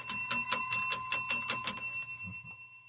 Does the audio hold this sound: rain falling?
no